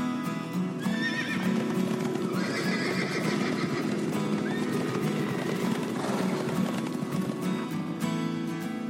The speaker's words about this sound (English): What are they? Answer, horses. The horse belongs to the species Equus caballus. It is a hardy, four-legged mammal. Each leg has one toe that is protected by a hard covering called a hoof, which is a lot like a really thick toenail.